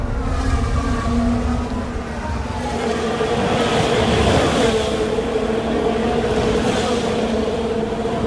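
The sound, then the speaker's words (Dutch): A Haas Formula 1 car with a broken Ferrari engine running rough and failing, a loud, continuous mechanical drone with wavering, uneven tones and a gritty rattle throughout, without any talking. “En zo klinkt een Haas met een kapotte Ferrari-motor.”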